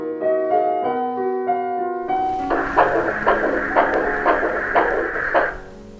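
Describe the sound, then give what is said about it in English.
A soft, music-box-like tune plays briefly, then a fetal heartbeat recording plays from a toy bear when it is hugged: a steady run of rapid, muffled thumps over a constant whooshing hiss, fairly loud, with no talking. “Then we hugged it and there was a sound indeed of the heartbeat.”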